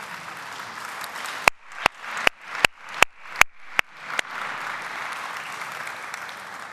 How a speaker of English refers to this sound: We got to celebrate with Miss Hazel yesterday. 100 years. 100 years. Will you please give Miss Hazel a round of applause?